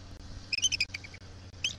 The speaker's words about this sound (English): This was Thursday afternoon when an eagle with the rather clinical name of F-23 landed on what's called the attic and called out.